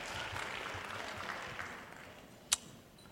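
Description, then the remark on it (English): Steady applause from an audience clapping as they take their seats, a dense wash of many hands clapping at an even level throughout, with one sharper, louder clap standing out near the end. “Clap those hands as you take your seat.”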